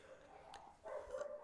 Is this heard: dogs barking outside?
yes